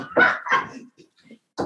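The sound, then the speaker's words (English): Dogs that have just been shut out of a room bark at the closed door: two quick, loud barks, a pause filled with faint whimpering noises, then another bark. No one speaks. “Now that I shut them out, they're going to go.”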